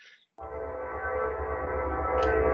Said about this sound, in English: I'll wait for the train to go. Oh. I thought that was a sound effect train that we're adding to the podcast.